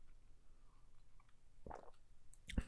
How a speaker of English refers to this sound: And I'm going to go ahead and take a sip here.